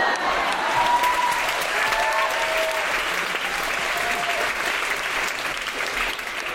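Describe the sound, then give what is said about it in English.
Sustained, loud applause from an audience, a dense steady patter of clapping that continues throughout with a few faint cheers or whoops rising above it. “More, but I like the applause, so I'm going to stop there.”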